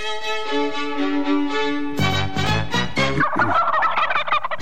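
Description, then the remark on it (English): A short radio jingle: a bright sustained musical tone, then a loud burst of rapid turkey gobbling, rattling and warbling over the music for the final couple of seconds. “I'll play the jingle for you.”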